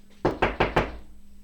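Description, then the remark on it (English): Joe Karam knocks on a door: four quick, evenly spaced knocks, solid, ringing out alone with a faint steady hum underneath. “And he knocked on my door.”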